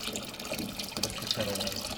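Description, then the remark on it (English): Hot water heated in a kettle is poured together with cold filtered water for making bread, pouring steadily into a container for a couple of seconds, a continuous splashing hiss at moderate volume, with no talking. “I use filtered water to make the bread, so then I heat some in a kettle and mix it with the cold and see what we have here.”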